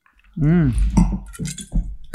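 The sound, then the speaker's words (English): Glasses clink together in a toast, a couple of short bright taps, mixed in with voices speaking and exclaiming around them. “Cheers. Cheers.”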